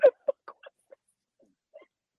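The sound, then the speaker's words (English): A dog gives a quick run of short, clucking yips, about six or seven, loud at first and then fainter and more spaced out, with no one talking, sounding almost like a chicken. “No, it was a dog.”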